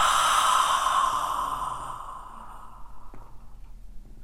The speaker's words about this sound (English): Deep breathing in through the nose. Hold that for four counts. Exhale with an H sound.